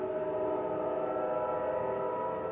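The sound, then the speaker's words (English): A steady, sustained tonal drone with layered harmonics from a train passing outside, holding at an even loudness throughout with no voices. “Man, can you guys hear that train?”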